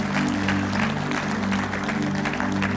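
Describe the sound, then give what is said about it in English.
A church audience claps steadily together in praise of God, dense overlapping hand claps filling the space with a sustained, even roar of applause over a low sustained musical drone. “Give Him one last hand clap of praise today.”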